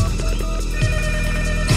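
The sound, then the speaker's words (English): A telephone rings steadily with a sustained, bright electronic tone that fills the moment at moderate loudness, with no one speaking over it. “Nick, pick up the phone.”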